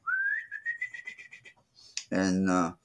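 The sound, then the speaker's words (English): A hawk call blown by a turkey hunter trying to get a shock gobble, the tongue tapping the mouthpiece: a rising whistle slides into a quick run of chirpy peeps, then after a short pause a loud, harsh scream bursts out for about half a second. “So I'm able to use the hawk call to do that quick burst of air scream, that little pee, pee, pee, and then to try to get a shot gobble.”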